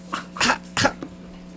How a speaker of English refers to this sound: Cough?